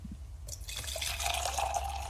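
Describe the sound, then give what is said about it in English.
Hot water pours steadily into a glass, a bright rushing splash that starts abruptly and keeps going, with the pitch rising slightly as the glass fills. No one speaks. “All right, that was the hot water.”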